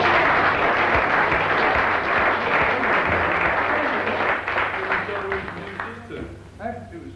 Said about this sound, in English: In general, we give her another clap.